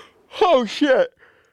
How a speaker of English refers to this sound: Oh, shit. Sorry, I had to yawn. That's how I yawn.